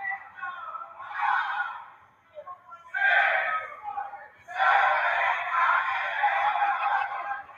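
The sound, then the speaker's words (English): A crowd of wrestling fans cheers and chants in three loud surges, with a brief lull between each and the last swell holding steady to the end. “Listen to the fans getting with it here.”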